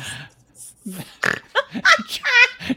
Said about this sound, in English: Then the chair farted